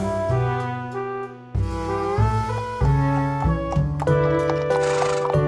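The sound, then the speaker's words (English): A short, bright instrumental jingle plays loudly on its own, with layered melodic notes shifting through several quick chord changes over about five seconds, like a segment transition sting. “Rejoin music, please.”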